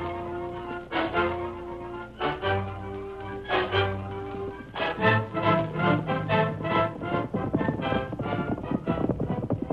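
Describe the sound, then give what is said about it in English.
Horse hooves clip-clop in a steady, quickening rhythm, fairly loud, with ringing tonal overtones behind the hoofbeats and no voices. “My horse is just about packed out.”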